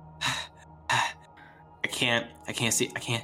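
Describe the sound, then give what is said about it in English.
A voice imitates the feverish gasping of a man collapsing to his knees: two sharp, breathy intakes of air, followed by a longer, shaky, strained groaning vocalization. “And then he collapses to his knees in feverish shaking and gasping.”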